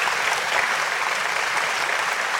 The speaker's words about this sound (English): Applause. Enter applause here. I'll try to find an applause sound effect.